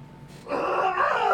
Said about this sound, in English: Excuse me. Wow. Yeah, there's a rule on the show. If you have to burp, you have to aim it away from the mic and also, like, yell and... yell in pain.